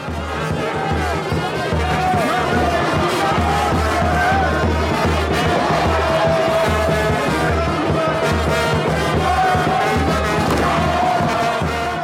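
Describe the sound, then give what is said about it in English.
A wrestling crowd at a big fight in Kinshasa, Congo, roars steadily, a dense wall of cheering and shouting voices with occasional dull thuds, loud and unbroken throughout. “Big fights like this happen all the time in Kinshasa. They're televised, reported in the sports pages, and attract thousands of fans.”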